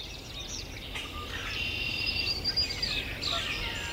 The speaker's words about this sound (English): So who are we listening to here? We're hearing northern cardinal, blue-gray gnatcatcher, warbling vireo, red-winged blackbird, swamp sparrow, yellow warbler, common grackle, catbird, common yellow throat, Canada goose.